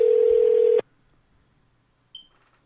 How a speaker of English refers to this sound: Who can it be? Stay tuned. Let's see. Let's see if they answer the phone.